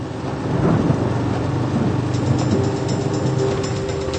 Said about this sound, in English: Das Wetter. Tief Tim bringt heftige Regenfälle und Gewitter nach Bayern. Regen, Gewitter. Das merke ich auch so.